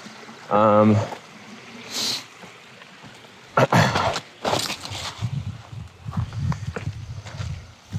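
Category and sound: nature, river water flowing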